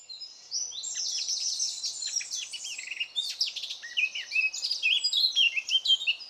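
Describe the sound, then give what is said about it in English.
A Eurasian blackcap (Sylvia atricapilla), a small gray songbird of the family Sylviidae, sings a rich, continuous warbling phrase of fluting and chattering notes, rising into a brighter, faster flourish near the end, heard clearly on its own with no talking. “The best example I know of is the Eurasian blackcap, Sylvia atricapilla.”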